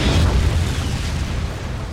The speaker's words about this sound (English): So Nico, across the street, pulls out a remote, hits a button, goes beep beep, and this truck here explodes very loudly.